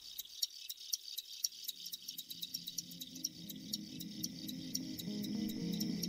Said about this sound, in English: In my opinion, the sound of a chorus of crickets is rivaled only by ocean waves or wind through aspen trees. There are a number of reasons they do this. It's the males who do this.